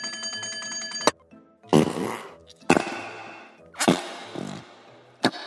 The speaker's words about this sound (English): Found my fart putty!